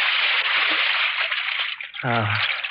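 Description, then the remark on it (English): Steady sloshing and splashing as someone slips into a pool from a ladder, with a brief voiced murmur or hum rising near the end. “Oh, it's good to get into the water.”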